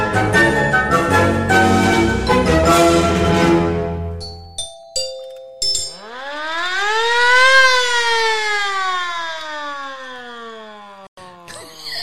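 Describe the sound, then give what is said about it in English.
A clanging run of bells gives way to a few clicks, then a hand-cranked air raid siren winds up to a loud, rising wail and slowly sags downward in pitch as it spins down. “Listen, the delight that you take in smashing those bells, it's the same for me when I turn the crank on this air raid thing.”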